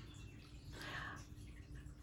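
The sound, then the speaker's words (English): Small birds chirp faintly in a brief, twittering burst near the middle, with softer scattered tweets around it over a low steady background hum. No one speaks. “Be like my little birds going back and forth to God.”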